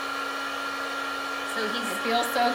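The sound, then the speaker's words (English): A terahertz device runs with a steady, hair-dryer-like electric whir, continuous and fairly loud, with a faint rustle and slight shift in tone toward the end. “the tool, I know maybe if you guys aren't watching the video, you can't see it, but it's like basically a hair dryer”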